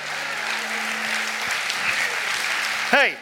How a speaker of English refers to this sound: Hey, why don't we really just give him a hand clap that he deserves right now? Come on, as big as you can give it. As big as you can give it.